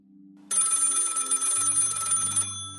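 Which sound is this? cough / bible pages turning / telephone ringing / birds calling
telephone ringing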